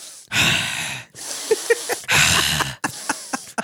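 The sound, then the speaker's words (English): A voice imitates a fuming man breathing heavily in bed: loud, forceful in-and-out breaths with a hoarse, wheezing rasp, repeated in a steady rhythm, with small clicks between breaths. “I hear him breathing very heavily in the bed, like...”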